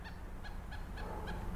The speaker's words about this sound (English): Oh, that's cool. That's a pileated woodpecker in the tree up above my house here. I'm in the backyard at home.